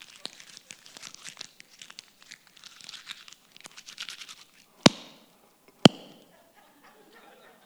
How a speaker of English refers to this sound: people are just jumping in line for $100. But what if I were to crumple it?